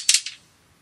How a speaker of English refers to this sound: That was dice number one.